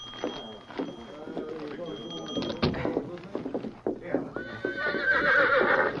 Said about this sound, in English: This is my horse. Steady, Victor. Steady, boy. Golly, he sure is a fine horse.